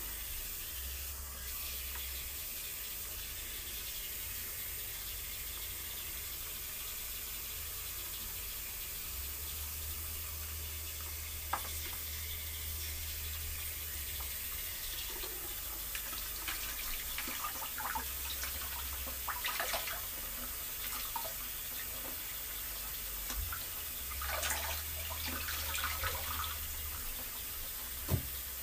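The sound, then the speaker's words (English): Steady running water from a tap splashes as hair is rinsed in a bathtub, with irregular drips and spatters over a constant low rumble, and no voices. “Definitely recommend that if you can use your tub, use your tub to kind of drain out the excess water.”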